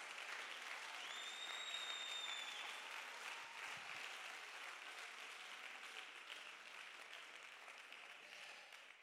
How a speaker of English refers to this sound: Oh, somebody clap your hands right now. Come on, somebody that believes it right now.